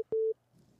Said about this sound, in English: Hold on. I got a phone call coming.